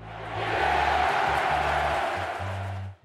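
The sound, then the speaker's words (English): A large cricket match crowd roars steadily for about three seconds after an umpire's decision, a dense wash of cheering and shouting with a low droning tone pulsing underneath before the noise cuts off abruptly. “And the crowd goes wild.”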